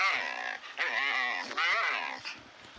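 A female dog whines to be let outside in three drawn-out, wavering high-pitched cries that run almost back to back, fairly loud, then trail off more quietly. No one talks.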